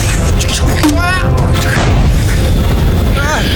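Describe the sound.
A loud, deep booming grenade explosion that rumbles heavily through the whole clip. Shouting voices cut in over the low roar.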